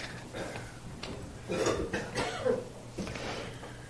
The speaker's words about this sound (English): I'm fearful to cough. If I cough and it comes out really loud, I'm really sorry.